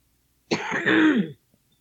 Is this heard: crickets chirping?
no